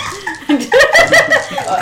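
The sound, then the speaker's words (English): A dog barks in a quick run of short, high, whiny yelps that rise and fall in pitch, loud and insistent for about two seconds, wanting to be let outside. “My dog electric. Wants to be let outside.”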